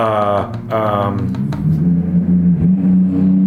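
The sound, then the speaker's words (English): A loud car-engine noise, apparently imitated by a voice: a revving, buzzing drone that rises and settles into a steady low hum, lasting a few seconds with no talking. “The giant car noise was your brain thinking.”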